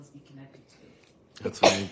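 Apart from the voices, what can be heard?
sneeze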